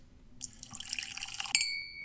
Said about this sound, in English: I just need to have some water. Just a little bit of water.